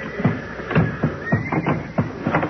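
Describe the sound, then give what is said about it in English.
Several old or sick horses, bolted in their stalls inside a barn that has been set on fire, neigh and whinny in repeated, overlapping cries, loud, with a frantic, panicked rhythm and a faint crackling hiss underneath. No one speaks. “They're beginning to yell good now. I guess they know what's up. All right, what's the difference? They're all old or sick nags.”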